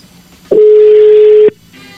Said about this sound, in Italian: Sì, mi dicevi, quindi se partiamo con la telefonata, si sentirà tanto di squillo.